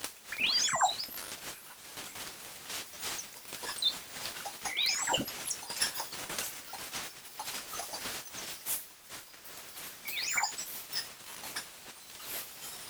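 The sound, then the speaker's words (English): The hinges of a 100-year-old door creak in three separate, wavering high-pitched squeals, heard in a slowed ultrasonic recording, over a steady hissing, rustling background from the coats and jackets of youngsters leaving a pool building, with no talking. “These are the hinges of a 100-year-old door.”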